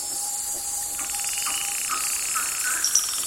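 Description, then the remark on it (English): A dense nighttime rainforest chorus of frogs, insects, owls and lemurs in the Marotandrano Special Reserve, Madagascar, a steady high shimmering drone with a sustained tone and scattered rising chirps and croaks over about three seconds, with no voices. “In the still of the night, frogs, owls, and lemurs were anything but quiet as Daniel Grossman recorded their sounds in the Marotandrano Special Reserve.”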